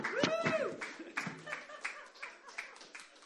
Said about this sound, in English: From where you are, let's clap, give a loud clap, give thanks to God, as we also welcome up the man with a message from God,